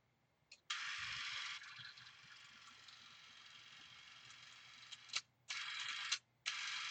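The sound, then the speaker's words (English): A vintage Bell & Howell Super 8 millimeter film camera runs with a loud, steady, buzzy mechanical whir for several seconds, then stops and starts again in two shorter bursts. No one speaks. “I got this Bell & Howell Super 8 millimeter camera. And check it out.”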